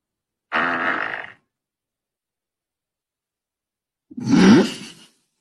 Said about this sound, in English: What was that? What was that? I think she farted. Was that you? Jeez. That was girthy. That was a good one. That was a good one.